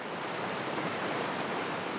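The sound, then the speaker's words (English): Steady, dense rushing water of No Name Creek, beside a small collection of homes near No Name Canyon: a continuous hiss and churn with no pauses or voices, holding an even loudness throughout. “For answers, I go to No Name, a quaint collection of homes not far from No Name Canyon and right next to No Name Creek.”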